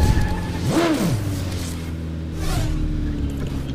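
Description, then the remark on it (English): A video game motorbike engine drones steadily during a free-roam bike session, with one quick rev near the start that swoops up in pitch and drops back, then a second, softer surge later on. “Why do I have to drive a bike? I want a cop car.”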